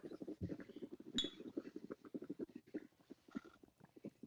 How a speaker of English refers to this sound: likes to swish that shot around before he does it. Yeah, it sounds great.